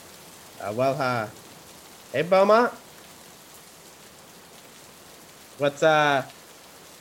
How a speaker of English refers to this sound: Is it, like, fucking raining on your end? Because I can't hear shit. Yeah, I'm out on my bike, actually. In the rain? No, no, not in the fucking rain. No, no, man. I was out riding. Then it started to rain